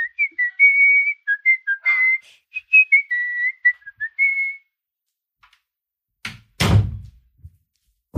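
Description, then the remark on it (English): Someone whistles a wavering tune for a few seconds, then after a pause a door is opened for an arriving guest with a short clunk and a heavier thud. “Let's just open the door for him.”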